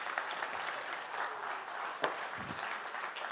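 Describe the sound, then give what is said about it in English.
A crowd claps steadily for a few seconds for young people, a dense wash of many hands at an even loudness with one sharper clap standing out partway through. “Give them a round of applause for our young people.”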